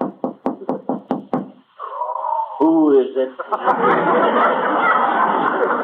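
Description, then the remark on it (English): Seven quick, sharp knocks rap on a door in a steady rhythm, loud, as a wife and a physician knock, before a voice answers and a burst of audience laughter and chatter swells up. “Shall we knock? They do.”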